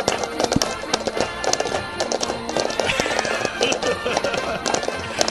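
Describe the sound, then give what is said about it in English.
Cups knocked against a surface in a quick, steady clip-clop rhythm, imitating trotting horse hooves, fairly loud amid a busy background with some voices. “My horse is trotting.”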